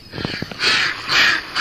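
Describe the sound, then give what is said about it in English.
Rowdy ducks call at the Duck Pond in Great Northeast Maine: a few short, lower honks, then three loud, harsh, raspy squawks in quick succession, with no one talking. “Okay, quiet down back there. They're getting a little rowdy.”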